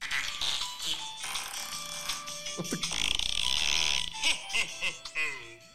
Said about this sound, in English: Is that implying thanks, Santa's farting? I think we asked this last year, didn't we? Huh? Is that implying that Santa's the one doing the farting, or is it just like Santa is with the farts? I don't know yet.